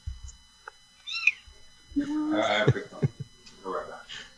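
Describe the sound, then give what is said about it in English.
A male cat meows several times, a short high cry followed by longer, louder, drawn-out wails, with faint background voices and small knocks in between. “there's a blue jay that comes and eats my cat's food every day when I feed him.”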